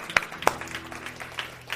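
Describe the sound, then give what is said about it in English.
An audience applauds. Two sharp claps ring out first, followed by a softer, scattered patter of hand clapping from the crowd over a low background hum. “Let's give a hand clap for those that have said that prayer.”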